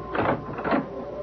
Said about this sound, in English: open the door.